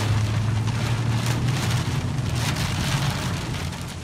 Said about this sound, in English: Take a walk across Nyando area in Kenya's Kisumu County in Western Kenya, and this is a common scene. Rain and driving hail.